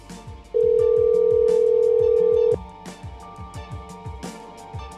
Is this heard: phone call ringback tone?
yes